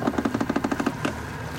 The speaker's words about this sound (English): it's with a sure hand that Tony turns his boat upriver, stopping periodically to scan the tundra